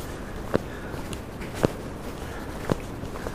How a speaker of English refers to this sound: So we're walking up the first big climb on our recce of the Bob Graham Round Route. It's a bit windy. but pretty clear.